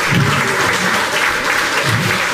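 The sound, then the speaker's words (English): Loud, steady audience applause fills the whole moment, a dense crackle of many hands clapping at once with no pause or letup. “Oh, applause break, dude.”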